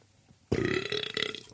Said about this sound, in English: That is really awesome that I just burped right there. You know what? Hold on. I got to bring the Woodwick in because that was a little stinky. That could make me gag. I cannot No one's ever heard that burp before. Oh, my God.